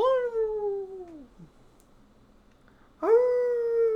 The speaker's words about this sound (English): Natalie doesn't want to know if there's coyotes around, but there's coyotes around